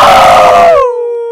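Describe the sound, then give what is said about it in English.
A loud wolf howl: one sustained, mournful tone that starts rough and breathy, then thins into a clean, wavering note as it trails off, with no other sounds around it. “Could be a wolf.”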